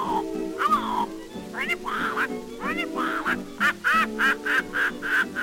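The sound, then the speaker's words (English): A parrot squawks in a loud, nasal series of harsh calls, starting uneven and then settling into a quicker, steady run of squawks toward the end. “Then the parrot says”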